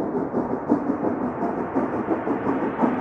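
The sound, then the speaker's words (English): A steam train approaches, rumbling along with a steady, rhythmic chugging pulse, a dense low roar that stays loud and muffled throughout, with no voices present. “You hear the train coming? You hear it steaming ahead?”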